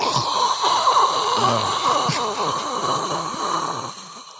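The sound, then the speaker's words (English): A voice imitates a toilet flush with a steady, rough rushing and gurgling hiss that lasts about four seconds, loud throughout and easing off slightly before cutting out. “Excuse me while I clear my throat and get a big flush.”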